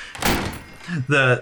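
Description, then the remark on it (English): A door slams shut with a loud, sharp bang, followed right after by short vocal sounds from a person. “I slammed the door behind me and then cast somatology to make the bang really loud.”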